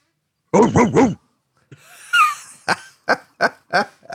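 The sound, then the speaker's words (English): A female dog barks, first three quick, high yelping barks, then after a brief whiny pause a steady run of five sharp, loud barks. “She seems to be being quiet now, but my dog was in full effect, and we were going to have a chaotic morning, and we might still, but she seems to be behaving herself.”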